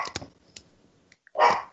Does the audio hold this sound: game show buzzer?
no